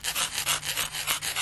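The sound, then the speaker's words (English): A razor blade fixed to a toothbrush shaving off a right earlobe: a quick, steady series of about eight harsh, hissy scraping strokes with no talking, over a faint low hum. “I'm just going to shave your earlobe.”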